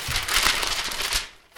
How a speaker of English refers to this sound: I actually want to rustle my Bromley News Shopper.